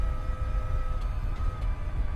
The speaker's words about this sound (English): The engine sounds less like a traditional car and more like some kind of spaceship.